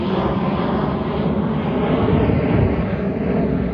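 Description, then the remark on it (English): A steady, loud drone of an airplane passing directly overhead under a heavily cloudy sky, filling the whole stretch with a broad engine rumble that swells slightly in the middle, with no voices present. “It's really cloudy, so I can't even see which direction this plane that's chasing above me and following me is, but I know it's like right the fuck above me.”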